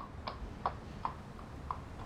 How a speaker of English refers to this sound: Oh my gosh, a horse and carriage. This is amazing.